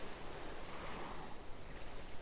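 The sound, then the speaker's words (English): A steady, full wash of open-sea water, with waves surging continuously and a faint wind rushing over it, no voices present, fairly loud throughout, heard from out on the open sea. “You can't get us right now because we're out in the open sea.”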